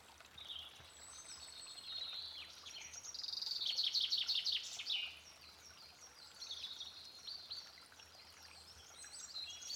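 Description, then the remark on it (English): Blackbirds and pigeons sing and chirp in a busy, overlapping chorus, loudest midway, over the steady soft trickle of a river. No one speaks. “Pigeons, blackbirds, all sorts going on.”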